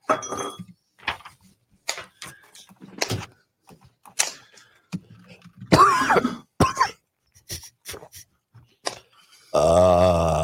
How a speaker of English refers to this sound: That cough is not productive.